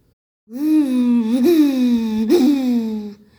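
A voice imitates howling wind blowing a hat up into the air, with a long, steady moaning "oooo" that lasts about three seconds, its pitch briefly swelling upward twice before it fades out.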